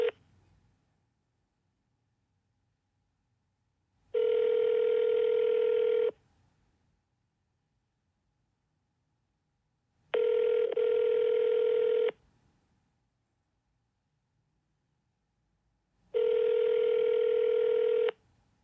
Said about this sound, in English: That ringing, that's what you would get if you were to pick up the phone and call Crime Stoppers right now. In fact, go ahead, push pause, give it a call.